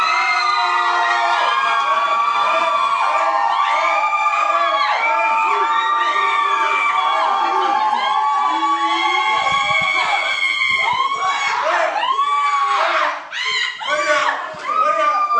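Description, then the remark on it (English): A crowd cheers and screams loudly and continuously at a costume competition, with many overlapping high-pitched shouts and whoops sustained for the whole stretch, swelling into sharper yells near the end, cheering for the James Bond costume entry. “If it's James Bond, let me hear from you.”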